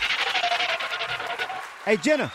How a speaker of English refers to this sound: We're gonna give her a round of applause. I'm gonna stop the background music.